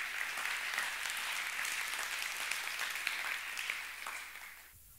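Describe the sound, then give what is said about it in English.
A large church audience applauds steadily, giving the Lord a hand clap, a dense wash of many hands clapping together at an even level for several seconds before tapering off abruptly at the end. “Come on, give the Lord a hand clap.”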